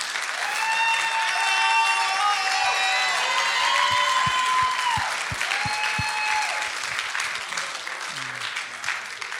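A crowd applauds steadily throughout, dense clapping with some cheering and whoops on top, plus a run of sharper, rhythmic claps in the middle before the applause gradually thins.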